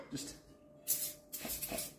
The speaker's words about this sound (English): Just some a light spray with some oil. Little spritz.